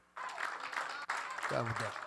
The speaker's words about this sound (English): And give God all the glory and the praise. Give him a hand clap of praise, y'all.